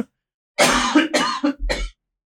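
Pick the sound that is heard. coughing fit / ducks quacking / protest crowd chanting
coughing fit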